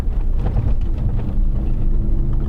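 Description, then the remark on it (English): A loud, steady truck engine drones from inside the cabin, a thin supercharger whine riding above the deep rumble throughout, with no one speaking. “You can hear the supercharger whine, but the exhaust is unruly.”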